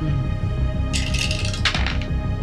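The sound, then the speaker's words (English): A single die, rolled for a strength check at difficulty 6, clatters and rattles across a hard tabletop in two quick bursts of tumbling clicks, over a steady low background hum. “Well, that is 1 success on the 1 dice that I have.”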